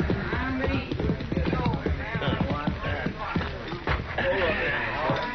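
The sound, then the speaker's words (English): Horses are ridden up at an easy walk to the chuck wagon of a cattle herd, their hooves clip-clopping in a steady, uneven rhythm, with a murmur of voices and outdoor bustle underneath. “We rode up to the chuck wagon just as the cook was hollering for the men to come and get it.”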